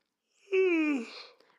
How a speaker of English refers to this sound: I gotta yawn one more time because